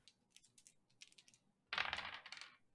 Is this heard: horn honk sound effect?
no